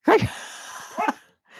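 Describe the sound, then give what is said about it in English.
A female dog named Sasha barks twice, a loud sharp bark followed about a second later by a shorter second bark, with a quiet hiss in between and no talking. “I have no idea why she's barking at me right now.”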